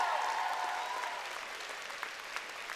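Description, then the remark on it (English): A crowd cheers and applauds at the end of a speech as the speaker walks off the stage: dense clapping with a rising shout of voices at the start that fades into steady, continuous applause with occasional sharper claps. “The crowd erupted one last time and the emperor walked off the stage.”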